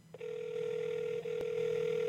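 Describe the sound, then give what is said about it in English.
A steady electronic ringing tone of an outgoing phone call starts almost at once and holds for about two seconds with only a tiny break, clear and fairly loud over faint background hum, no voices. “I'm calling him from my phone real quick.”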